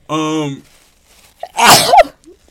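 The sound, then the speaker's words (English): A loud sneeze with a drawn-out, tonal vocal wind-up first, then a short pause and a sharp, explosive burst trailing into a faint breath. “Well, nigga, so is you sneezing 11 million times.”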